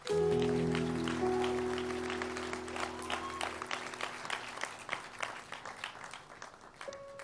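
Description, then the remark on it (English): A church audience claps hands to the Lord in a dense, steady patter that thins slightly over time, while sustained low keyboard chords ring under it during the first half and then stop. “Clap hands to the Lord.”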